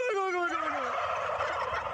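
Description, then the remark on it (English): Turkeys gobble in a loud, rapid, rattling burst that starts with a falling warble, continuous for about two seconds, with no talking. “This guy knows how to talk turkey.”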